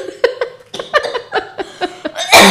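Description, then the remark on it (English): A coughing fit: a run of harsh coughs in quick succession, about eight sharp bursts in a steady rhythm, ending with one louder, rougher cough. “Having a coughing fit.”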